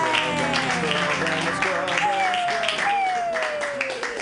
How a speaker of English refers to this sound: Clap wildly